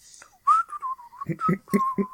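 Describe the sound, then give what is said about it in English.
Someone whistles a short, wavering melody, the clear notes sliding between pitches, with a few low, muffled bursts of sound under the last notes. “What if he just, embiggened to his regular size and then went back down whistling, walking down the street saying hi to everyone as everyone says hi to him.”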